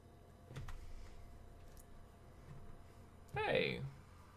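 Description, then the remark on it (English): A door swings shut with a short creaking scrape partway through, louder than the faint room sounds and soft movement before it. “Shut the door.”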